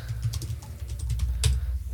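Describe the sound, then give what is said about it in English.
Steady clatter of computer keyboard typing, a run of quick keystrokes with a couple of sharper, heavier clacks near the end, no voices present. “I ordered a new keyboard. So, like, that's... Five of the keys don't work.”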